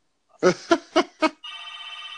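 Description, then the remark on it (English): A telephone rings clearly: four quick, evenly spaced bursts, then a steady, buzzy electronic tone that holds to the end. No one speaks. “as I answer this phone call. Who could it be now?”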